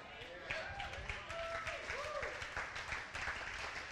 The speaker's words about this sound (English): You know what? Let me tell you something about the guys who are clapping. They know how dead they were, right?